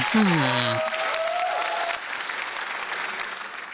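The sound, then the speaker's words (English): An audience applauds in a dense, steady wash of clapping that drops off somewhat after two seconds. A voice is heard briefly at the start over the clapping. “Audience, how about a big round of applause?”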